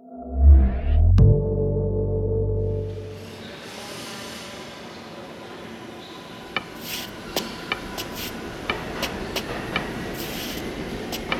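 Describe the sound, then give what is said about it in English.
A subway train pulls away from a station, opening with a loud low rumble and hum that fades into steady rolling wheel noise punctuated by sharp metallic clicks and squeals from the rails. “Stop the train!”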